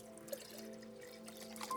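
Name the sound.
water being poured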